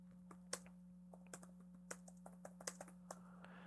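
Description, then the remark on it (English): Irregular bursts of typing a search on a computer keyboard, a dozen or so sharp clicks at uneven intervals, fairly quiet over a steady low electrical hum, with no voices. “Thank you, keyboard.”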